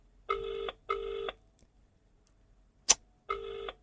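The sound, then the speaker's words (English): A phone ringback tone heard down the line on an outgoing call to a friend: a double ring of two short electronic bursts, a pause, then the next ring starting, with a single sharp click in the gap. No one speaks. “If your phone rings for more than 3 rings, you're not answering your phone.”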